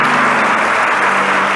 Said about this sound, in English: Give him a mighty hand clap of praise. Hallelujah.